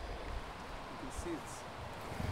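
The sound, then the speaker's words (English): A gently flowing stream with small rippling whitewater, heard as a soft, steady wash of water noise that stays faint and continuous throughout, with a couple of brief brighter splashes. “it's just gently flowing, and there's some ripples, little whitewater ripples down to the left”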